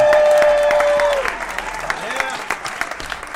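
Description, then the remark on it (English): An audience breaks into applause, dense overlapping clapping throughout, with a sustained high whistle or whoop over the first second before the clapping carries on alone. “Give applause to everyone that moved the cactus or a cedar stump last year.”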